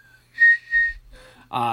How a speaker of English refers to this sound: Apparently, I whistle like that.